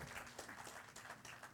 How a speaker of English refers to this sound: You can clap for him. You can clap for him. There you go.